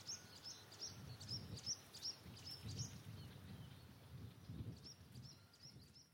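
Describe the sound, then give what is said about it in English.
A background chorus of reed warblers keeps up a steady run of short, chattering notes over a low outdoor rumble. No one speaks. “You can hear a background chorus of reed warblers.”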